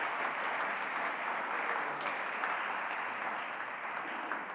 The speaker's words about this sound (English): In fact, we can just clap for them.